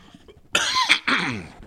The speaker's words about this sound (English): I'm going to cough.